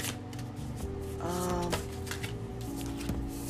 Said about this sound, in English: So I'm going to, let's see, shuffle these cards and see what I pull for you.